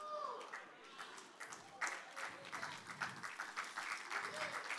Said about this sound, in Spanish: Si aplaudes así de flojo, no lo crees. Si aplaudes así de flojo, no lo crees, no va a llegar lo tuyo. Aplaude con ganas.